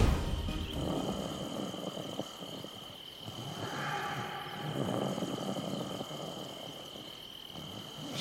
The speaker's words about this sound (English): Jeez. Ugh. He snores worse than Dad. Why does everyone snore when they get old?